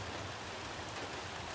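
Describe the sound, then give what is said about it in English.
Steady rain falls as a storm fades away over the rooftops of a small town, a dense, even hiss of countless drops holding a constant level throughout with no voices and no distinct thunder. “The storm was fading away finally, and I stood up and looked out over the rooftops of the small town.”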